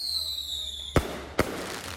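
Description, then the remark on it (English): Two sharp bangs of illegal fireworks in New York go off about half a second apart, loud and booming, with a faint whistling tone fading out just before the first blast. “They were furious over the ongoing problem of illegal fireworks plaguing New York and cities across America, keeping people up like it was the 4th of July every night.”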